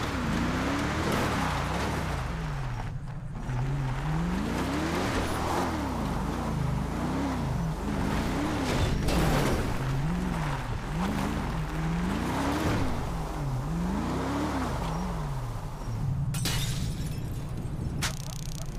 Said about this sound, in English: Alright. Give me my patrol car. Let's ride.